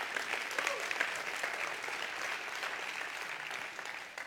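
A crowd applauds steadily, a dense wash of many hands clapping at once, holding for about four seconds before easing slightly at the end. No one speaks over it.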